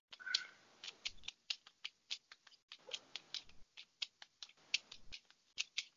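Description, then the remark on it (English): Cards being shuffled and handled before being laid out, a quiet run of crisp papery snaps and flicks in an uneven rhythm, with no voices. “I'm sure you can hear me shuffling.”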